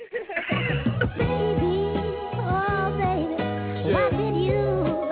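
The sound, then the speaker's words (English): A hip hop song intro by an underground artist from New York plays loud, with deep bass notes pulsing in a steady repeating pattern under gliding melodic lines that rise and fall. “So I'm going to play this joint … right now.”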